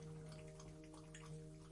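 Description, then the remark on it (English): Faint, wet slurping and dripping sounds of a man drinking water, a quick irregular patter of small splashes over a steady low background hum, with no talking. “That's him, by the way, drinking water.”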